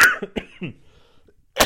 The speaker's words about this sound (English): And hopefully I'll get rid of this cough sometime soon.